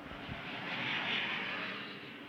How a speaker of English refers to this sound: There's the planes.